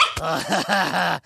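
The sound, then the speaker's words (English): A puppy growls and yaps in a quick run of short, voiced bursts, fairly loud, ending abruptly after about a second. “More puppy? He's at the peak of cuteness.”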